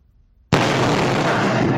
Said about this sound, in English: That is a giant boulder crashing into a house in Honolulu, narrowly missing a woman by just inches. It's believed excavation work nearby caused the boulder to come barreling right through the cinder block wall.